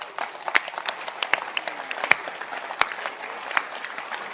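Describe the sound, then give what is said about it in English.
A crowd breaks into steady applause for a pastor who has served for 40 years, many hands clapping at once in a dense, continuous patter with a few sharper claps standing out, moderately loud with no voices on top. “He's worth clapping.”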